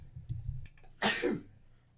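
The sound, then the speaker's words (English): A single sharp sneeze bursts out after a second of faint breathy rustling, then trails off into a brief nasal tail before quiet returns. “Gesundheit.”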